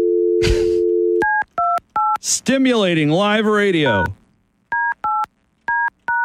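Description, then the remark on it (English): A steady telephone dial tone plays briefly, then a quick series of keypad dialing beeps as a caller dials someone back. A man speaks over a pause, and another short run of dialing tones follows. “Just dialed him back.”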